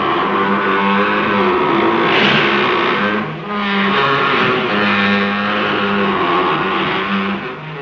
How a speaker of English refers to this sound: The sugarcane mill is a super creepy scene. I mean, you've got these mindless workers. And the loud machinery. Yeah. As the mill is noisily crunching the cane.